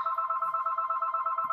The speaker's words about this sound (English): Wow. Who still has a home phone? Okay, we're back. Sorry for the interruption. I got a phone call.